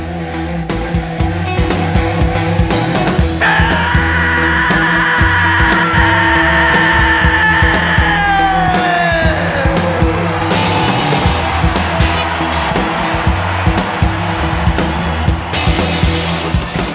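At a live concert, a singer lets out a long, massive, sustained howl that holds steady for several seconds, then slides downward in pitch, trading back and forth with the captivated crowd, all over a loud, constant wash of crowd roar and live music.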